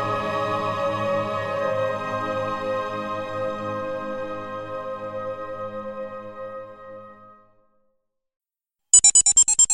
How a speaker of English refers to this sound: Why am I getting a phone call? My sister's calling.